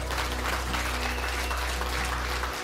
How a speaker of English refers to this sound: Hallelujah. Can y'all give God another hand clap of praise?